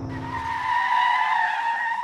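A car speeds into a parking lot with a roar and its tires screech in a long, loud skid lasting a couple of seconds as it stops, the high squeal steady with engine rumble fading beneath it.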